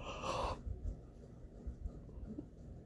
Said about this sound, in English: And I didn't realize, sorry, I yawned.